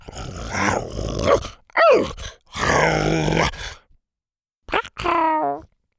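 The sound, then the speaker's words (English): A voice imitates a starving T-Rex growling as it eats flapjacks and is poked in the face by Triceratops horns: several loud, rumbling growls and groans in quick succession, a brief pause, then two more strained, rising growls. “He growled every time the Triceratops' horns poked him in the face when he bent down to take another bite.”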